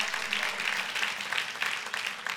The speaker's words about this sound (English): You guys better clap on that one.